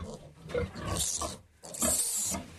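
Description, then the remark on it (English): Pigs squealing loudly and harshly, two long shrill bursts separated by a brief pause, with no talking. “The only thing about swine is that they scream when they are being hurt. We don't like this, so we call it squealing.”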